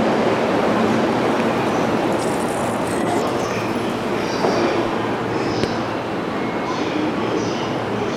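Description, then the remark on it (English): A train at a station fills the air with a steady, loud mechanical roar, with high metallic squeals rising and fading over it and faint background voices. “I hope it doesn't smell crabby, but I gotta get on this fucking train.”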